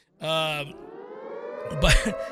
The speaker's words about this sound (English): Now, if you want to play the siren, guys, you go ahead. You crank that siren all you want.